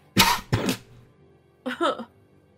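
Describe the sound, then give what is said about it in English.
Two sharp coughs in quick succession, then after a brief pause a rougher, voiced throat clearing in two short bursts. “Cough button.”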